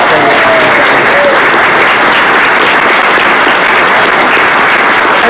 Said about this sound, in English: Round of applause.